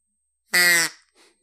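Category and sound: tool, duck call being blown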